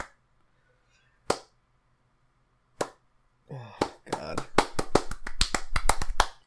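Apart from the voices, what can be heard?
golf clap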